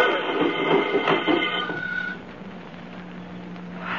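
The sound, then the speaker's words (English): A car with its brake released, pushed off, rolls down a downhill road picking up speed, a steady, rumbling whir; an early whining tone fades after a couple of seconds, leaving a continuous noisy rumble with no voices. “Look how fast it's picking up speed on the downgrade.”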